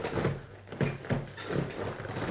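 A chair creaks and scrapes as it's shifted around during a microphone test, with several short, uneven groans and thumps over about two seconds, moderately loud and with no talking.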